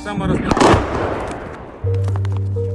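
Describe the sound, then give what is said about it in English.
A single heavy boom of an incoming artillery shell from the Russian side, heard at a trench position in a wooded area, bursts out and rolls away in a long, rumbling decay, followed near the end by a steady, low droning hum. “We heard the boom of an incoming artillery.”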